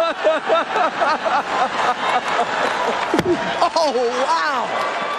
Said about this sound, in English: It's now being called the slap heard round the world.